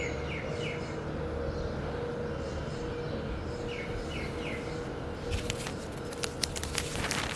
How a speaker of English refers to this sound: It's the second weekend in April. It's Easter Sunday. And there is nobody outside. There's no music, no noise. The road is completely empty. And the only thing you can hear, even several hours into the morning, are just birds.